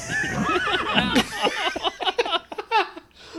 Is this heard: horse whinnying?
yes